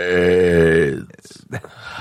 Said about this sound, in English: Is that your go-to burp? Give me another one, then we'll wrap up. Give me another thing. Okay, that's your go-to burp. AIDS burp.